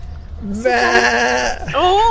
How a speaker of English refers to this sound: What was that? Sheep.